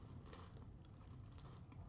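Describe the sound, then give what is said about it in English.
Crunching of a sweet chilli crisp being chewed, a steady stream of dry crackly snaps and bites over about two seconds, fairly quiet but continuous, with no talking. “It's crunchy. You probably hear the crunch.”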